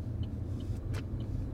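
car driving

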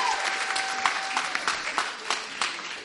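weak audience applause

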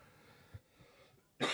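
coughing

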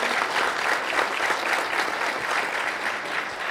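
audience round of applause

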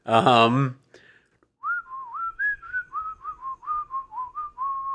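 person whistling a tune

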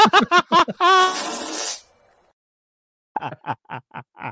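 fart noise

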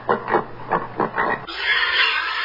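pig grunting

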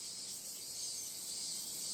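cicadas buzzing

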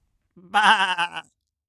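sheep bleating

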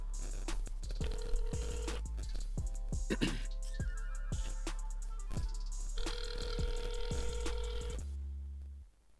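phone ringing

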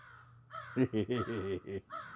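crow cawing sound effect

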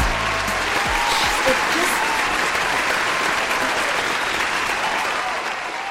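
applause

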